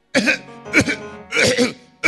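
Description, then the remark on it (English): A person imitates a goat coughing, making a series of four or five rough, voiced hacking bursts with short pauses between them, loud with no other talk. “And when I'm with the goat, was coughing.”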